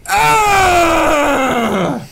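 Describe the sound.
A person imitates a man screaming: one loud, sustained strained cry of about two seconds that slides steadily downward in pitch and then cuts off, with no other talk.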